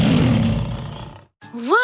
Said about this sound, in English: Let's welcome our first participant, the lion. Please begin roaring.